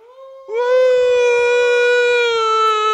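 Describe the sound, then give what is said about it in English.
A person imitates a wolf howl with a long, loud, steady vocal tone that starts softly, steps up in pitch after half a second, then holds for over two seconds with a slight drop. “Let's give him one more wolf.”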